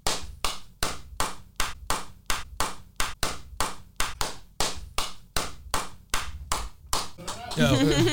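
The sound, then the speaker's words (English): Steady hand clapping, about two sharp claps per second, sustained for several seconds before voices break in and talking takes over at the end. “That nigga just started clapping.”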